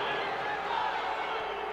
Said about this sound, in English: And the crowd, with very loud boos after the no call on the foul there on that dunk.